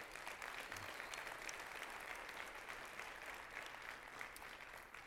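An audience applauds steadily, many hands clapping at once in a dense, continuous patter that holds an even loudness for several seconds without a break.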